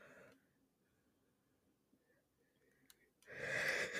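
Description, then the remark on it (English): A tired person yawns: a brief breathy sound, a long quiet pause, then a loud, drawn-out, airy exhale with a strained, rasping edge at the end. “Yawning on the track.”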